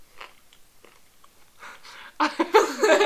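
Chewing a small bagel with soft, irregular bites and mouth noises, quiet at first and then louder, wetter crunching and munching toward the end, heard alone with no talking.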